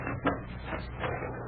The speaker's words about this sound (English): All right, open that door and we'll see what this barn has to offer.